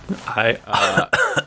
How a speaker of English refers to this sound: I still have a cough.